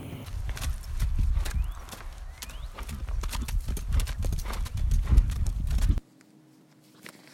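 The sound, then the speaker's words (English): Steady clip-clop of horse hooves trotting down a trail at a regular rhythm, fairly loud, with outdoor rustle underneath, ending abruptly after about six seconds into near silence. “the adventures of Junior Giggles trotting down the trail.”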